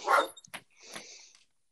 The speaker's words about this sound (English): My dog is going ballistic. I hear that. I should probably investigate that.